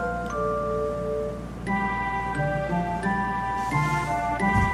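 Video game soundtrack music with chiming, bell-like notes ringing out in a slow melody over a steady low drone, each note struck sharply and left to sustain. No voices.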